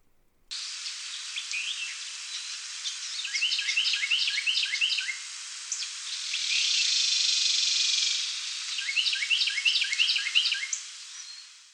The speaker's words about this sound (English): The male sings his tea kettle, tea kettle, tea kettle, but then that female comes in at the end for this rattle call that almost adds like percussion to the song.